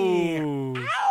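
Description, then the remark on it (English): A single strained, wailing yowl, loud, sliding down in pitch and then sharply back up, much like a dying cat; it seems to be a human voice imitating the sound. “I don't know what that was. That was like a fucking cat.”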